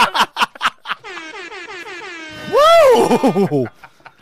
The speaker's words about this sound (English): I just had a coughing fit as retribution for what I said.